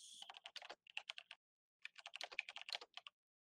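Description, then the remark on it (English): Rapid clacking keystrokes from a mechanical computer keyboard, crisp, in two quick bursts separated by a short pause, with no voices. “Someone's typing.”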